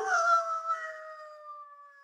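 Jacko, a three-quarter Irish setter in Manchester Village, Vermont, lets out a long, sustained howl, steady in pitch and fading slowly over about two seconds, heard clearly with no talking.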